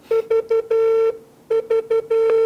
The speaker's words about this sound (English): Very odd beep. That's a really weird, I've never heard that beep before.